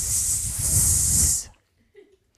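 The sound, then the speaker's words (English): A snake hissing: one loud, sharp, breathy hiss held steadily for about a second and a half, then cut off into near silence. “So he tied the snake in knots, and the snake did not like that and hissed.”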